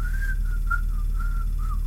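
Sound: whistled melody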